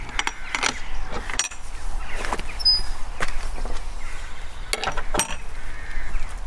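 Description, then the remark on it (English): Outdoors, a metal gate clinks and rattles as it is handled, followed by several footsteps passing through onto a permissive footpath, with scattered sharp knocks over a steady background of wind and ambience. “So let's go through the gate.”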